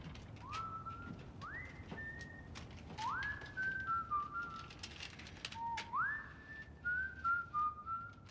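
A man whistles a slow song melody in a film, rising notes sliding up and holding, phrases repeated with short pauses, clear over a faint background hum.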